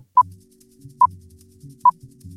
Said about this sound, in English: So this time, no pausing. We'll hear some beeps and then the questions will start, so make sure you're ready. Here we go.